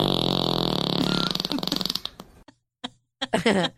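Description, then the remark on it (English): A long, drawn-out fart noise buzzes loudly for about two seconds, breaking into sputtering pulses before it trails off; a brief voice follows after a short pause. “Wait, will you do the long rip real quick?”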